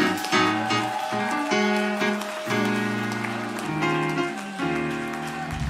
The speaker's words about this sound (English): Clap your hands one more time and give them a shout of praise in the room.